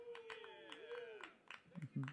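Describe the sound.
A little scattered applause: a handful of quiet, irregular claps beneath a louder sustained voice whose pitch slides down and back up.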